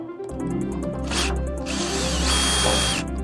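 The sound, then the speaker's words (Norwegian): A power drill runs steadily for about three seconds, its motor hum holding a low droning pitch with a rising whine as it drives a screw, then it cuts off briefly at the end. No talking. “Jeg er på å skru på det greiene, men jeg klarer ikke å bestemme meg om jeg skal ha...”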